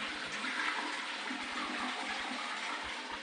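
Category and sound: household object, toilet flushing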